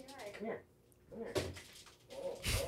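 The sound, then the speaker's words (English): A dog named Nova, just bathed, snorts in a couple of sharp, breathy bursts, with shuffling movement around it, while people talk intermittently in the background. “It's a wild dog.”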